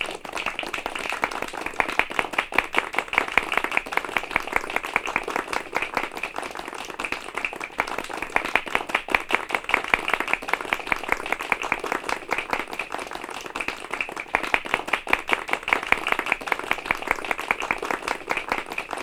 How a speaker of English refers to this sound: and just type polite clapping and just go to YouTube and find that, because it's nice and genuine. It feels like you're not going overboard on like the woo, yeah, like crazy ones, but it's like, oh, you know what? They're being polite. They like it.